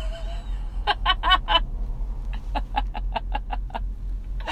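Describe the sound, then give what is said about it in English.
A goose honks in quick, repeated bursts, first a tight cluster of four, then after a pause a steadier run of about eight, over a low background rumble. “Down to the goose. Goose.”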